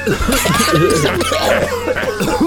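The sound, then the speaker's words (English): Several people cough and sputter at once, loud, in an overlapping, continuous burst of hacking with raspy, voiced gasps mixed in for the whole stretch, after breathing in a whiff of vapors from a cloud of black fumes. “but everyone else, you breathe in just a whiff of these vapors and immediately start coughing.”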